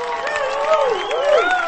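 A large crowd cheers wildly and without pause, with rising and falling whoops and shouts riding over a dense wash of applause and noise, loud throughout.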